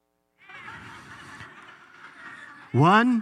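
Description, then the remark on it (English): A crowd of many voices holds a sustained shouted "Ah" together for about two seconds, followed by one louder, strained cry that rises sharply in pitch. “Let's hear you go, "Ah!"”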